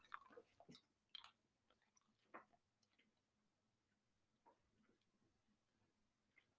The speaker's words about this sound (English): Black licorice. I can't chew it quick enough. I can't stop laughing in order to swallow it.